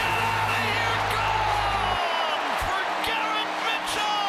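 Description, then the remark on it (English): A baseball crowd in Milwaukee cheers for the Brewers after Jake McCarthy's diving catch up and over the wall, in a loud, steady roar that holds for the whole stretch, with a low droning tone underneath during the first couple of seconds. “Well, no matter who's sitting, Brewer Power has them standing and cheering in Milwaukee.”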